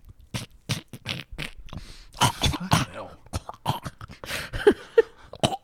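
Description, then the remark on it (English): Someone bites, chews and rubs their shirt, producing a rapid, irregular series of crunchy rustling bursts that imitate an animal scraping its teeth on a bed, continuing steadily with no talking. “Because I'm assuming a bed is made of linen, so I'm just rubbing. I'm just biting my shirt. Just chewing.”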